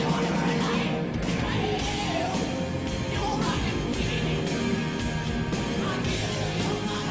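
A rock song's chorus sung live, with dense distorted guitars, pounding drums and a voice on top, holding a steady loud level throughout the whole stretch.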